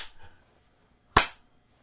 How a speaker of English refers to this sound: Are you giving me the Brubaker clap? No, that would that's be slower.